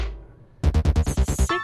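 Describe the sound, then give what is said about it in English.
Dice rolled in a game clatter onto a table, coming up a six, in a quick run of about seven or eight sharp, rattling knocks, loud and evenly spaced, after a brief faint lead-in, with no talking. “Oh, dice don't screw me now.”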